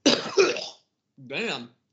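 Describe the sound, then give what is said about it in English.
A harsh, raspy cough bursts out in two rough pulses, followed after a short pause by a guttural throat clearing with a gagging, retching edge, fairly loud. “That was like a cough that turned into a vomit. It was a throat clear.”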